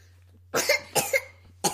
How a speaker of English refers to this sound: Sorry, she was choking. Well, she wasn't choking. She was just coughing a little bit.